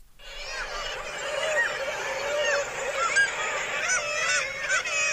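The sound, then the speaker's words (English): A dense chorus of harsh, grating northern gannet calls, many birds overlapping continuously as in a crowded colony, steady and fairly loud throughout with no talking. “up next, meet Morris Bassinus. That's today's Talkin' Birds featured feathered friend.”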